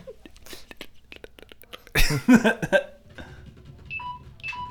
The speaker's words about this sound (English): That is your phone. It's yelling at you. God, why does my phone yell at me on every podcast?